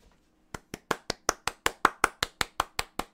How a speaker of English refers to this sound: Golf clap.